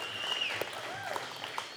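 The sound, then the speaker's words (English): A church audience claps in steady, dense applause, a broad crackle of many hands at an even moderate loudness, with a few faint whistles and cheers rising above it. “So let's celebrate with her right now and clap, because this is awesome.”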